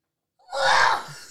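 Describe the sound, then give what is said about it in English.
A single loud, explosive sneeze bursts out after a brief silence and a quick intake of breath, its harsh, breathy noise trailing off for a moment. “You got to fix your horrible. Sneeze.”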